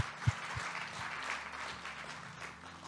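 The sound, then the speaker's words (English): A crowd applauds the youth before a final service, with steady, dense clapping that fills the whole stretch at an even, moderate level, with a couple of low thumps near the start. “And before I start our final service, и прежде чем я начну наше заключительное служение, can everyone give a quick little round of applause to our youth?”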